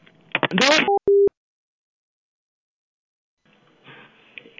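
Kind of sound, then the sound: signal or alarm, telephone tone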